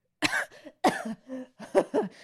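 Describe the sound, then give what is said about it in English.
A woman has a harsh fit of coughing after taking too big a sip of a strong drink: three sharp sputtering bursts in quick succession, each trailing into a raspy, strained wheeze. “And she takes too big of a sip and all but coughs fire.”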